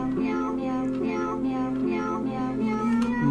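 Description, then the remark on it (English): A little cat piano toy, labeled Cat Piano Classics in Sharpie, plays a melody as a quick run of synthetic meow notes, one after another in a steady bouncy rhythm, loud with no talking. “So here's a little cat piano for you guys.”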